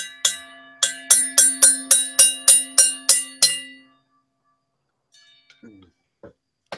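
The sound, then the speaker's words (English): A small bell, struck without its hammer, is hit about eleven times in quick, fairly steady succession, each bright metallic ring decaying briefly before the next; afterward a faint voice murmurs in the quiet. “I found the bell. But of course, I lost the hammer again.”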